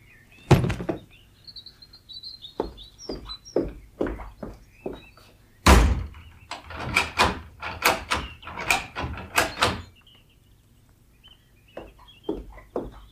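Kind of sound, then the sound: household object, cellar door opening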